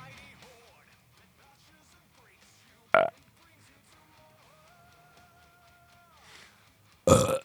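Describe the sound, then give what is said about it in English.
Two loud, abrupt belches burst out of a fairly quiet background, one near the middle and another near the end, each short and forceful, with faint tonal beeps and murmurs between them. “No, we're gonna bank burps and all that.”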